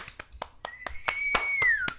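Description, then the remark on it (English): Steady, evenly spaced hand claps, roughly four per second, as the hosts all clap at the conclusion of their Wii segment, Fwee Fall, with a sustained high whistle-like tone that glides downward near the end. No one speaks. “We're all clapping.”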